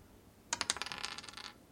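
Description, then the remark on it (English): Dice are rolled across a hard tabletop to decide whether to accept an offer, a quick burst of sharp clicks that rattle rapidly for about a second before settling, with no voices. “1 or 2, accept offer. 3 or 4, decline offer. 5 or 6, ask for pure washing up liquid.”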